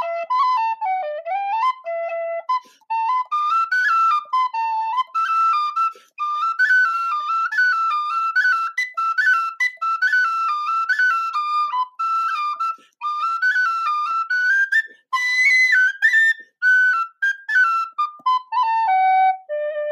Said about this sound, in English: Did you have anyone up there to clap for you? Were you clapping for yourself? Or what do you do when you finish a tin whistle song on the summit of Fitz Roy and you're all alone?